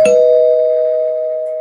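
A single doorbell chime, used as a spoiler-warning sound effect, is struck once and its clear, bright tone rings on, fading only slowly over the next second or so, loud and alone with no voices.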